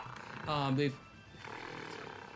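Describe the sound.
A voice imitates gorillas snarling at a downtown construction site with one short, loud, throaty growl that rasps for under half a second, then falls away into quieter breathy noise.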